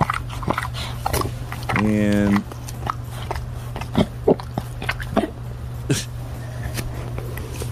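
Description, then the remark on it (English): Wet, smacking licks from a dog in an ASMR video repeat in quick irregular bursts close by, broken once by a short, nasal, snorting whine, with a steady low hum and brief speech underneath. “This video also has some bonus noises. There's the licking.”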